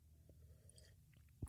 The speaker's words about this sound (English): Quick sip of coffee.